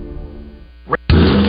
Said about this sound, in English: Hear that? That's the sound of the 2023 Chevy Silverado and its TurboMax engine. delivering impressive power with no compromise durability.